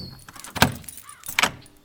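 A door lock is turned with one of several keys attached to a long wooden dowel and the door opened: two sharp metallic clunks about a second apart, with faint jangling and rustling between them and no voices.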